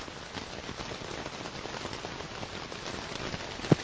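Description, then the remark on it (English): Steady rain patters on a tent, a dense, continuous hiss of drops, with one sharper, louder drip near the end. No voices. “Play random. Rain on tent.”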